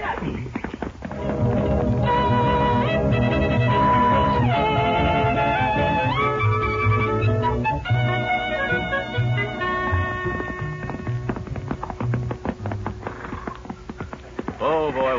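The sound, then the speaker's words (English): Galloping horse hooves of riders hurrying to a hideout drum in a steady, rapid rhythm beneath a loud, bright musical score that carries a rising and falling melody throughout, the hoofbeats partly buried under the music. “Will you and Johnny put these horses somewhere so they'll be out of sight?”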